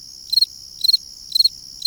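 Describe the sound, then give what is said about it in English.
A fall field cricket (Grillus pennsylvanicus) chirps in a steady rhythm, each chirp a quick trill of three or four pulses, repeating about twice a second over a quiet background. Recorded by Lang Elliott and Will Hirschberger. “We leave you this week with a distinctive sound of the season, the fall field cricket, Grillus pennsylvanicus.”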